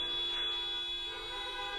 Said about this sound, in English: shouting and honking. Are they like teachers from the school saying we miss you? I don't know. I'm assuming something like that. So, we're just going to sit here and listen to some honks and beeps because of course we are.